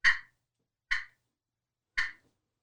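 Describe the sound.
Three sharp, separate turkey clucks, the start of a turkey fly-down cackle call, each a short bright pop, spaced about a second apart with silence between them and no talking.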